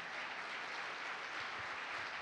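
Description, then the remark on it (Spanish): A crowd applauds, a steady, dense wash of many hands clapping at even volume throughout, with no voices heard over it. “Wow, yo creo que eso vale la pena que demos un aplauso, ¿verdad?”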